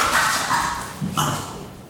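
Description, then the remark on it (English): The speaker's dogs bark a couple of times in quick succession, fairly muffled, with no talking over it. “Sorry, guys. My dogs.”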